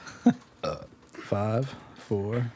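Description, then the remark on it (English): A string of burps: two short clipped ones, then two longer, drawn-out croaky belches with brief pauses between them. There's no talking over them. “5, 4, 3. Burp.”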